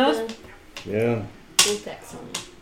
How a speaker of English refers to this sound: Stop rolling the goddamn dice. I'm gonna get you a pad or a box to roll it in.